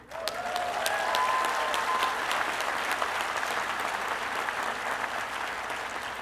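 A crowd claps and cheers steadily for several seconds as students of an incoming class who share a first name are called on to cheer, dense applause filling the space, with a few brief whoops or whistles rising above it near the start.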